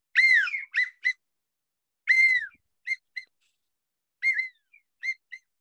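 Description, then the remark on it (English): A small handheld widget whistle from just outside Portland, Oregon, blown in three bursts, each a longer falling tone followed by two or three short, bright toots, shrill, with silence between and no voices. “And look at that. That's a nice little whistle.”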